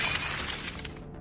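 A short, sharp burst of glass shattering, bright and crackling, with fragments tinkling briefly before cutting off into silence, as a bullet hits a figure in the face and its glass eye holes shatter out. Moderately loud, with no voices.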